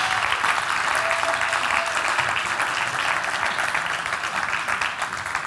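A crowd applauds steadily for several seconds, a dense wash of clapping hands at a fairly even, loud level with no voices rising above it.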